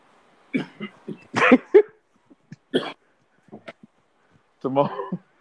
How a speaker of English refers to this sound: Yeah, the cough was on point, though. The cough was on point, dog. The cough was on point because I'm sure somebody coughed, bro.